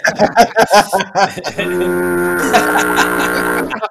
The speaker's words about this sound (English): whoa, we need to hear that foghorn, Danny.